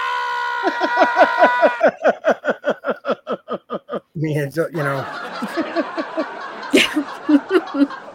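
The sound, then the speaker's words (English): A canned laugh track of a crowd laughing, with rhythmic bursts of chuckles and snickers rising and falling over several seconds, loud and lively, then a mix of scattered laughter and chatter. “Man, I haven't heard a laugh track in a really long time.”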